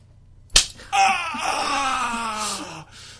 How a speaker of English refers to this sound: I think we're going to have to raise the intensity, okay? I'm going to slap you a little harder, and you get me harder, too.